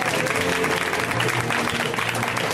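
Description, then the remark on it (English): Steady, dense applause from a sizable audience for comedian Ron Babcock, a continuous wash of clapping hands at full volume with a faint murmur of voices mixed in. “Let him hear it.”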